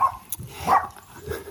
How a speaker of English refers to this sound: You're listening to a dog. You're seeing a dog if you're watching.